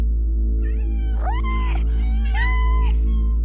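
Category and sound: animal, cat meowing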